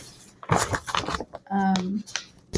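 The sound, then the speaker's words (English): Papery rustling as several pages of a book of image-and-text entries are flipped in quick succession while someone looks for a page, followed by a short hummed or murmured voice and a bit more rustle. “Here, I'm shuffling because I'm looking.”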